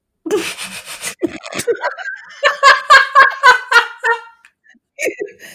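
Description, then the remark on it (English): A person trips over the word "terrible" and makes a rapid, warbling vocal noise, a string of quick throaty pulses that resembles a turkey gobble, followed by a short burst of laughter. “That sounded like a goddamn turkey. You sounded exactly like a turkey.”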